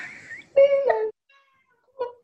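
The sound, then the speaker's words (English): A male cat lets out a loud, drawn-out meow with a strong harmonic wail, followed after a brief pause by a shorter, quieter meow. “I can hear the cat.”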